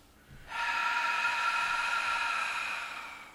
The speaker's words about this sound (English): And we'll begin by breathing out through the mouth all the way. So just breathe out the mouth.